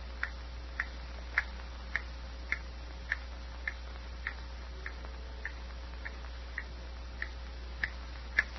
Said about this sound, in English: Dreary silence, broken only by the hammer-like ticks of the old clock